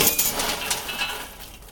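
A hot popcorn kettle is flipped down by its handle and popcorn tumbles onto the tray in a dense, bright rattle with light metallic clinks, loud at the start and thinning out over under two seconds. No one speaks.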